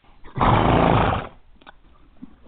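A horse lets out one loud neigh lasting under a second, rough and breathy, then the sound drops to a quiet background with faint shuffling.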